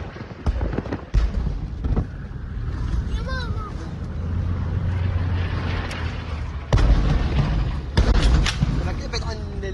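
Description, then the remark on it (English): Several massive explosions boom at irregular intervals, loud, over a steady rumbling engine as a vehicle speeds along a road in Gaza during the war, carrying a family escaping, with frightened voices heard in between. “we were sharing his exclusive dispatches of his nearly month-long effort to escape from Gaza with his young family, including this harrowing moment when they were speeding through a Gaza road amidst massive explosions.”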